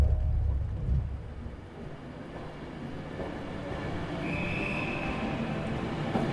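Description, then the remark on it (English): A branch line train from Carlisle toward the coast rumbles steadily along the rails, a continuous low mechanical roar with clattering texture, and a brief high-pitched wheel squeal rises near the end. No one speaks. “Walter travels up to Carlisle and then moves onto a branch line train.”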